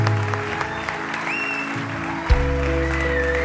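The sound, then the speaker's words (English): A large crowd at a church service claps steadily with cheers and a few whistles rising above it, a low rumbling thump of stomping underneath, and one sharp bang midway through. “Clap, stomp, cheer.”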